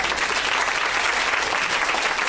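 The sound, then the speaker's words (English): An audience at a comedy show applauds steadily for a couple of seconds, a dense, even wash of many hands clapping at a constant loudness with no voices breaking through. “Let's hear it for that guy.”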